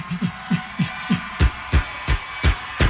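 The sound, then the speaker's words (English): A rapid, evenly spaced volley of about ten gunshot blasts, starting as dull low thumps and growing into sharper, louder cracks toward the end, with no voices. “Gunshots.”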